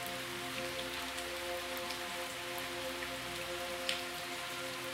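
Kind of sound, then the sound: nature, heavy rain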